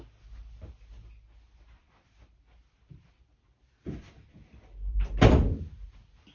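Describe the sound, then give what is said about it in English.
A door is opened and then shut, with a soft clunk followed a second later by a louder, heavier thud as it closes, over faint low rumbling. “Let me get the door.”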